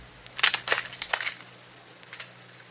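A quick cluster of sharp, dry snapping cracks as arrows are broken by Chiricahua council members to give consent, four or five in a row, followed by a couple of fainter snaps, over a low steady hum with no voices.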